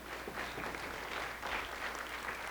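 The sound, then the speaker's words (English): An audience applauds the volunteers who pulled a cornerstone out in a demonstration, a steady, dense wash of clapping hands that holds at an even, moderate loudness for a couple of seconds with no voices standing out. “All right, give them a round of applause.”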